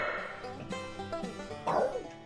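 A dog named Susie barks and yips several times in a studio, in quick, uneven, moderately loud bursts, with the last bark the strongest.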